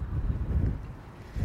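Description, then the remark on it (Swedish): Low, rumbling wind buffeting a microphone in fine weather as the speaker walks out of a parking garage, the wind combined with the draft from walking; a steady blustery roar with gusty surges throughout and no one speaking. “Och ja, ni kanske hör att det blåser lite mer nu. Det är väl vinden i kombination med vinddraget från när jag rör på mig.”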